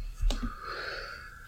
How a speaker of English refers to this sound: It looked like you coughed off of my bong load.